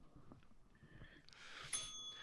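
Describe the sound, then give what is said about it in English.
A bell is struck once, about three-quarters of the way through, and its bright metallic tone rings on steadily to the end over a soft background rumble. “Ring the bell, Tony.”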